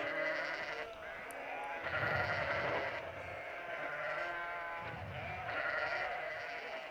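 Sheep bleat repeatedly in overlapping, wavering cries, several animals calling in a steady chorus with no gaps of silence.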